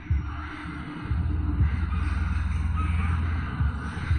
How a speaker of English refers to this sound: So that kind of low creaking sound is a bit intimidating. We've still got that wind in the trees going. We've got the ill wind a fair bit louder. The wolf howls are still going. And now we have crows, not a very nice bird.